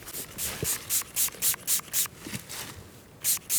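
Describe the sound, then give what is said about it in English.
Fox urine is sprayed onto a wick in a quick series of about ten short, hissing pump-spray bursts, fairly steady in rhythm with a brief pause near the end, and no talking. “Spraying fox piss on this wick.”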